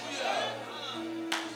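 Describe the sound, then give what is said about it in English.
A church audience claps after an hour-and-a-half sermon in a steady, dense wash of applause mixed with murmuring voices over a low hum, with one sharper, louder burst near the end. “Now, y'all clap like I didn't just preach an hour and a half on the mysteries of the kingdom of God.”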